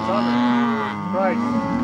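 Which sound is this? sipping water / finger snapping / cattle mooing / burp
cattle mooing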